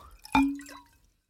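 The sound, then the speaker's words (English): A short splash of water poured from a water bottle into a glass jar, one distinct plop with a brief hollow ringing tone that fades within half a second. No voices. “I'm going to add a little more. Where'd you get all this water? My water bottle.”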